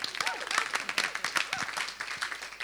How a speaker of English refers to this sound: So we're just going to give a big applause now to all those listening on podcast. Yay!